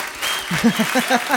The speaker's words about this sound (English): That's the full one. That's the 15-second one. That's a lot of applause.